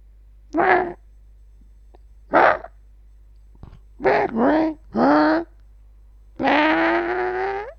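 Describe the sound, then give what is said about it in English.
A voice imitates a dinosaur call, saying hello in a dinosaur language: a string of loud hooting cries in several short bursts separated by pauses, then one longer wavering call that rises in pitch. “So what I just said there was hello. I said hello in a dinosaur language.”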